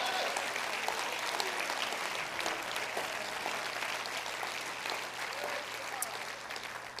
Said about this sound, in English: Come on, clap your hands if you're a testimony.